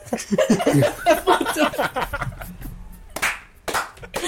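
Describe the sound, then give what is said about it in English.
Chatter and laughter give way to a couple of sharp, loud hand claps struck together in unison, each a crisp smack with a brief gap between them. “Dude, you guys just clapped it like simultaneously.”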